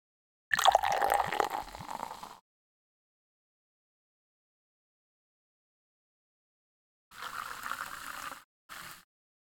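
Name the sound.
carbonated soda fizzing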